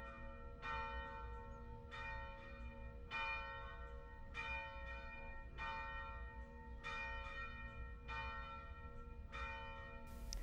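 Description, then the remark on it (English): Church bells ring in a steady, repeating peal, each strike blooming with a bright metallic attack and long overlapping hum, fairly loud, with no voices over them. “The bells have begun to ring.”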